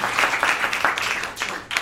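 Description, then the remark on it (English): Steady audience applause for Rabbi Bentzion Shafuer at an event, a dense crackle of many hands clapping at once, fairly loud and sustained with slight swells and dips throughout. “Let's give him, please, a big round of applause.”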